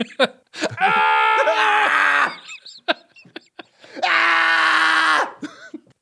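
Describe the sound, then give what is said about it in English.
A man moans and groans loudly in two long, drawn-out, strained bursts, with brief gasping breaths and small vocal sounds in the pauses between them. “Loud and frequent moaning, groaning, gasping.”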